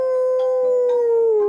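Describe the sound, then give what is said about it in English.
A single long wolf howl, voiced by a person in imitation, holds one steady mid-pitched note for over a second before sliding slightly lower, loud with nothing else around it. “They ran and ran and ran until they heard the sound of a howling wolf.”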